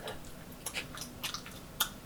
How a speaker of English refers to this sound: Oh, shouldn't chew that many times.